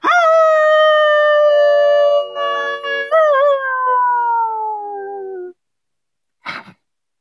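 A single long, loud howl rings out, holding steady before its pitch slowly sinks and cuts off, followed after a brief silence by a short, sharp yip.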